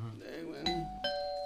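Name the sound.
doorbell ringing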